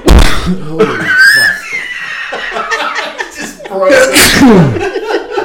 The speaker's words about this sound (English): Broke the show. First person to sneeze in the microphone.